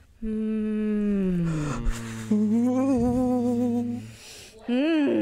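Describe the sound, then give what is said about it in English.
Several voices hum together in steady, sustained tones. The pitch glides down and settles on new held notes, then breaks briefly before a final wavering hum. No words are spoken. “Maybe let's do some humming. Let's do some humming.”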